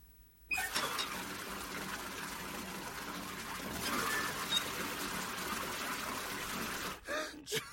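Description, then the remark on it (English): Water splashing and sloshing in a steady, dense wash of sound for about seven seconds, loud, then cutting off abruptly with a brief splash at the end. “Just splashing around noises.”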